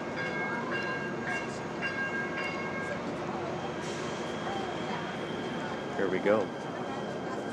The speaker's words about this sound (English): So I'm on my way right now, waiting for the Chinatown subway. Oh, looks like they're pulling up now.